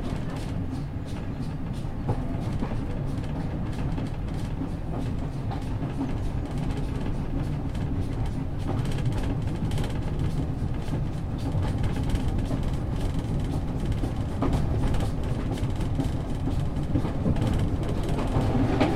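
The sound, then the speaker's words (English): A coal-fired steam train rumbles steadily along the rails, a continuous low roar with a faint rhythmic clatter of wheels running through it, loud and unbroken throughout. “Smell the coal and the steam.”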